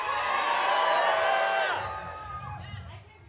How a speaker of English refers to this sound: scream yes if you agree that we should vote yes on this upcoming strike authorization.